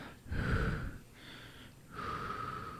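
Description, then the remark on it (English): A voice imitates slow, heavy, raspy breathing, three drawn-out breaths with a whistling, mask-like hiss, fairly loud with brief pauses between them. “And the breathing, man. Just...”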